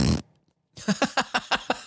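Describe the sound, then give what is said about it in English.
A burst of noise, a brief pause, then a quick series of about six squelchy, flapping armpit fart sounds in a steady rhythm, fairly loud, with no talking. “I want to make like an armpit fart sound.”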